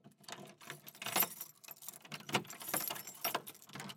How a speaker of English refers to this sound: Jonas hears several sounds of doors and locks.